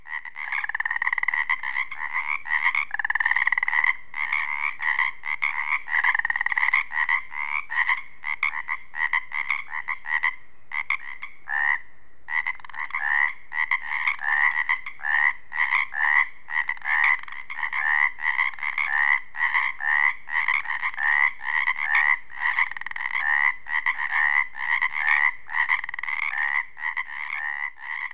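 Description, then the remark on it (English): A dense chorus of Pacific chorus frogs on the Olympic Peninsula calling nonstop, overlapping ribbit-like croaks forming a loud, continuous pulsing wall of sound with no voices. “Let's leave the Pacific chorus frogs and head further south on the Olympic Peninsula,”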